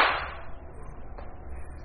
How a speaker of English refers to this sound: And let's slap you across the face.